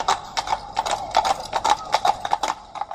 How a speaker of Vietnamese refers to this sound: Một người đàn ông bí ẩn, mặc đồ toàn màu đỏ, cưỡi một con ngựa đỏ, có đai ngựa màu đỏ vụt qua.